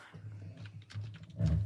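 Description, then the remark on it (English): A short run of soft, irregular keyboard clicks, a few keystrokes in quick succession over a low steady hum, with a slightly louder burst of taps at the end. “It says you're typing something.”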